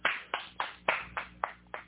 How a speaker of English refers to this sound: I'm the only one clapping.